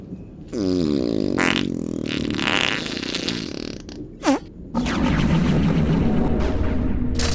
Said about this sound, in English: Holy shit! I farted out a bike!